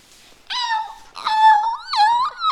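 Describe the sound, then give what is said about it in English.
A voice imitates a dolphin with three high, whistling squeals, each sliding up and down in pitch and rich in overtones, loud and separated by brief gaps. “That sounds like a dolphin.”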